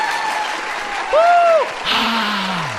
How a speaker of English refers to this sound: Let's give a warm applause